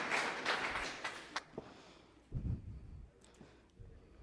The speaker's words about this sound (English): Thank you, guys. Give the ushers a round of applause and a word of appreciation. Well done.